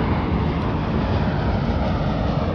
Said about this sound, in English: Oh, yeah. Sorry about that. There was an airplane.